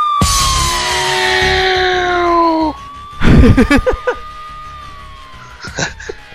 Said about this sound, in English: but there's Scott Steiner's sirens going off.